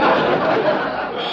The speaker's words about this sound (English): What's that? Oh, that's Arthur, my goat.